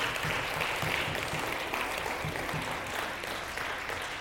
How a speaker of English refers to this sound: Yeah, that's it. We can clap for a question.